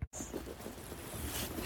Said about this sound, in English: Listen to the rain gently falling onto the ground and the sound of the horses breathing in the background. Birds singing in the trees.